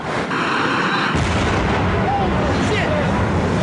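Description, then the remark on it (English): A generator explosion on the B2 level of a building booms out, a deep blast that swells into loud, sustained rumbling roar and keeps going, with faint screaming voices mixed into the noise. “And the first thing I'm going to say is that a generator just blew up on the B2 level, the level below me.”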